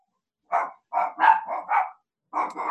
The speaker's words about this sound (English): Oh, there go my dogs. Give me 1 second.